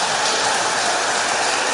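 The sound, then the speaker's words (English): A dense, continuous clatter of a long, very straight line of dominoes toppling, including down some steps, at a domino event in Germany, so rapid the individual clicks blur into a steady rain-like hiss, holding an even loudness throughout with no voices. “But no, the dominoes are toppling.”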